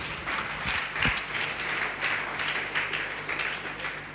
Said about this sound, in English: Clap for Jesus again.